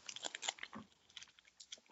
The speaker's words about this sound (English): Sorry about all the chewing noises, everybody. Mm. These are they're called Hi Chew.